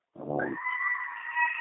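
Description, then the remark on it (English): A goat lets out a loud, sustained scream, playing from a YouTube video on a computer, starting with a rough, low bleat before jumping to a shrill, piercing cry that holds steady for over a second. No one speaks. “I'm assuming that's screaming goats.”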